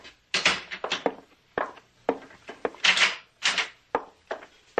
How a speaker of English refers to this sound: Close the door.